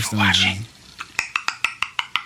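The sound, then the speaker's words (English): A brief hummed vocal sound gives way to a quick, even series of about nine crisp tongue clicks made by a male, each sharp and bright, sounding alone with no talk over them. “He's just clicking his tongue.”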